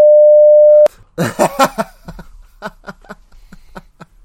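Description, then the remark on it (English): A steady, loud censor bleep, a single pure mid-pitched tone lasting just under a second, cuts off abruptly and gives way to a voice and a series of quick, rhythmic tapping sounds. “You can bleep it out. Bleep it out at least.”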